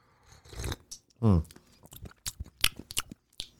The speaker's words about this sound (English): Huh. You got to chew it a little bit.